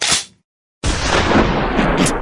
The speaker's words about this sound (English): Right shotgun sound.